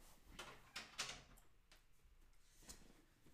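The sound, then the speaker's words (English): A door being closed: a short series of knocks and latch clicks over about three seconds, fairly soft, with a quiet background and no one talking. “As I close my door, hold on.”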